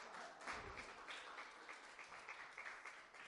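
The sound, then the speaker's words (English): An audience claps hands in praise to the Lord as people make their way back to their seats, a dense, steady wash of applause from many people that holds at an even level for a few seconds. “Let's give the Lord one more hand clap of praise while you make your way back to your seats.”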